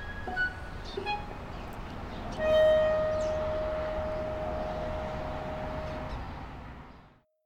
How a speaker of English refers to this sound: we'll just let that motorbike go.